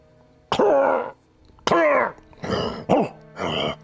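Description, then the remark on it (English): A voice imitates a distant growling bark coming from far above: five rough, throaty bursts in an uneven rhythm, the first two longer and harsher, the last three shorter and raspier, with no other talk. “This distant kind of growling bark sound.”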